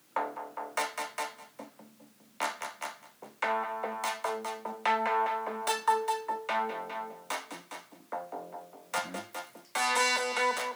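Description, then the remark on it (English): A Moog Model 15 modular synthesizer app on a phone plays a rhythmic sequence of bright, buzzy electronic notes with sharp attacks, shifting pitch and timbre over about ten seconds, heard alone with no talking. “Model 15 Moog. Built into my phone.”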